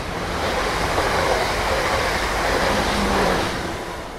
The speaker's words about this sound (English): A thunderous roar blows past as the caboose chugs by.